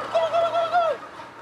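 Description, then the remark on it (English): A short burst of turkey gobbling on a turkey farm in Chiayi County, Taiwan: four quick, warbling mid-pitched notes run together in a gurgling series, fairly loud, then fade into a quiet background hum with no one talking. “Turkeys are native to North America, but they've been on Taiwan since the 17th century, brought over by the Dutch, who briefly colonized the island.”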